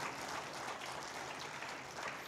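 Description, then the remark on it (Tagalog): An audience claps loudly together during a sermon to show agreement, a dense, steady wash of many hands applauding for a couple of seconds without any voices over it. “Lahat na nag-a-agree, pumalakpak ng malakas.”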